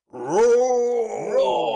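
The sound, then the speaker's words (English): A lion roars once: a loud, drawn-out, throaty call that rises at the start and then holds steady for over a second, with a slight waver near the end. “Immediately we're roared at by a lion.”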